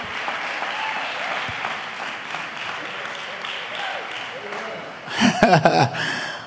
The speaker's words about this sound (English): I wish somebody on the East Wing would clap their hands a little bit, because I want to hear from you.